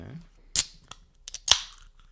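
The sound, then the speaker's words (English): A can of Coke is cracked open: a sharp metallic snap, a couple of small clicks, then a second louder pop of the tab followed by a brief hiss of escaping fizz. “Let's do the can next.”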